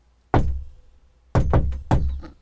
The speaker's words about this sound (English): He gave the secret knock.